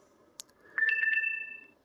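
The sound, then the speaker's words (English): A phone's low-battery alert: a soft click, then a short run of bright electronic chirps settling into a steady two-note tone that fades out after about a second. “Oh no, don't die, phone.”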